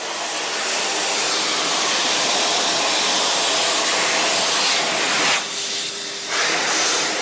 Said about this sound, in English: Fast forward to today, and we have new options, including the Exelon, which produces a cool but very strong force that loudly dries your hands in a few seconds.